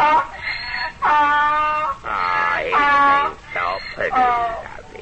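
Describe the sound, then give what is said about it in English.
A donkey brays in loud, strained hee-haw bursts, about five wavering harmonic cries alternating high and low over several seconds, with no talking. “Till I make this donkey bray.”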